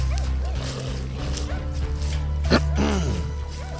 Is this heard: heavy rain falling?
no